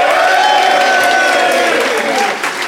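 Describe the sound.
A Phoenix audience applauds loudly and steadily to vote for the side they think made the better case, with dense clapping and some cheering and voices mixed in, fading slightly toward the end.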